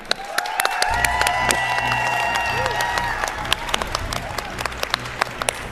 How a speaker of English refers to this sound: We have another guest to introduce you to. You know her, you love her work, the writer of all 5 stories of Wilds of Eldraine. Let's give a huge round of applause